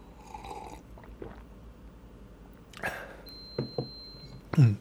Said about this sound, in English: Can you hear that beeping? It's my coffee machine turning off.